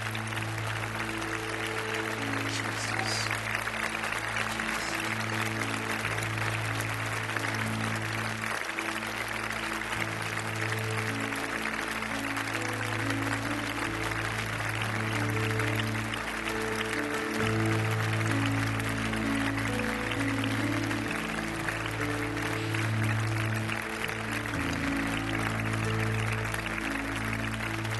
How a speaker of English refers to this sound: I want us to stand to our feet this morning. Let's honor those men by giving them a hand clap right now. Heaven cheered those men on.